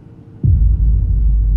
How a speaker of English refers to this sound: The cabin shook and swayed as we entered a monstrous black storm cell.